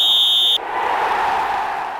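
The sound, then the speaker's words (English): A whistle blown to start play: a single shrill, steady blast lasting about half a second cuts off abruptly, giving way to a loud, even rushing noise like a crowd roar that continues to the end. “Let's play ball! Whistle!”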